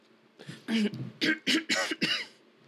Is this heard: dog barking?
no